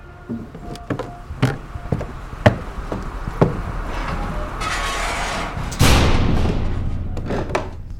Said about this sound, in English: Close the door behind you if you don't mind.